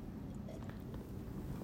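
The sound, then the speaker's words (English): A few soft slurping mouth sounds of someone taking a small sip of tea, heard over a low steady background rumble with no talking. “Number two, a little sip of tea.”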